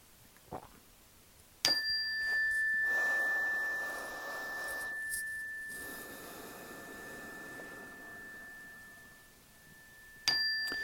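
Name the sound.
meditation chimes ringing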